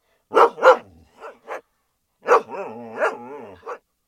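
animal, dog barking

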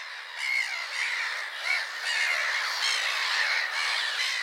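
bird, seagull squawking

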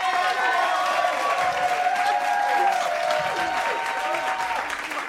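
crowd, audience applauding and cheering

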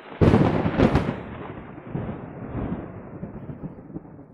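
nature, thunder

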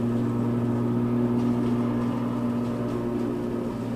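machine, lawnmower engine running

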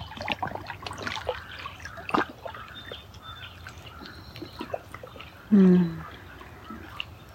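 nature, trickling water

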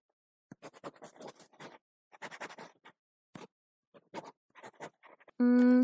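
household object, pencil scratching on paper

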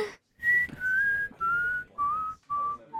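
human body sound, person whistling

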